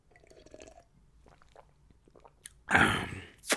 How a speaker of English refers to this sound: Water break, boss. Quick sip of water, boss. Don't mind me now, boss.